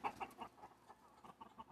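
A hen clucks in a quick, choppy series of short, throaty notes, brief pauses breaking the rhythm. The clucks are fairly soft and no one speaks.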